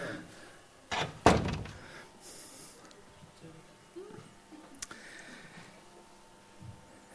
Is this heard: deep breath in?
no